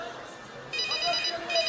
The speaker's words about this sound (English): Hello. You've rung me, haven't you? Yes.